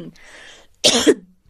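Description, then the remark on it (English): A single harsh winter cough bursts out after a soft, breathy inhale, short and fairly loud, with no talking around it. “a winter cough. We've all been battling that.”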